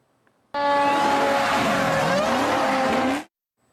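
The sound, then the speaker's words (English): A car's tires squeal loudly and continuously over a roaring engine for about three seconds as it circles a fire truck several times in Orange County, near Sand Lake and Weingard, the shrill pitch wavering as the vehicle turns hard, then cutting off abruptly. No one speaks. “A man is facing charges after a video shared on social media shows a car circling an Orange County fire truck several times.”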